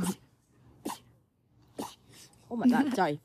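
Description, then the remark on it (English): Three sharp sneezes burst out in a row, each short and breathy with brief pauses between, followed by a voice speaking at the end. “Or, oh, we got the sneezes again. Here they go.”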